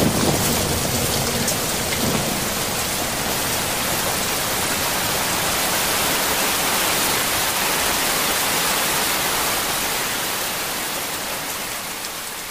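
Heavy rain pours down steadily, a dense, hissing roar of water with no pauses, fading slightly toward the end. No voices are heard.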